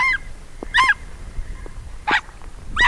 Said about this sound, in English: Then there's the wolf itself, which doesn't sound or behave much like a wolf. In addition to yelping at public radio reporters who venture too close to its den, the Ethiopian wolf is a creature of the day instead of the night